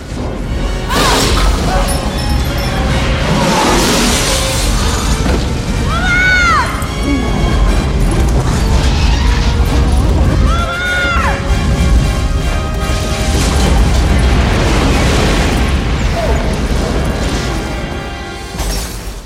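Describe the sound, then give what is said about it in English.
A huge explosion roars on for many seconds as it moves slowly through a car tunnel in Los Angeles, a dense, loud rumbling blast with crashing and smashing mixed in and a few rising-and-falling whistling tones cutting through. “are in the car in a tunnel in Los Angeles, and they see the big explosion slowly making its way through this tunnel.”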